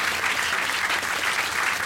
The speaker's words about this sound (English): So please give us a clap for all the ….